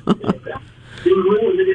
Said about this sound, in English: Oh, I'm echoing.